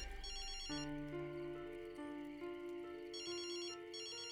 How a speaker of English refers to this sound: Then, in the middle of the night, a call came on Oren's cell phone.